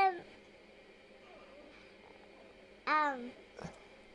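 A cat gives a single loud, drawn-out meow with a wavering pitch, followed by a brief softer squeak; no one talks.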